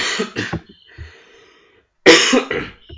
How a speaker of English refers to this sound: Excuse me. No. I don't. I'll just die from coughing.